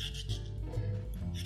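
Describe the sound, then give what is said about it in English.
A beet being peeled: steady, rough scraping strokes that rise and fall in quick succession over a low hum, with no voices. “I tend to peel beets, but you can always brush them if their skin is tender.”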